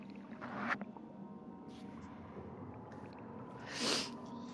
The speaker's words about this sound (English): Was that the splash heard around the boat?